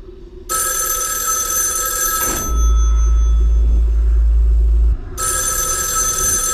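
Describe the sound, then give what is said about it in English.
A tape-recorded telephone bell from the film Freddy Got Fingered rings in two long, loud bursts, separated by a heavy low-pitched hum that fills the gap between rings. No one speaks. “It is a tape-recorded message of a phone ringing. That's what we're hearing.”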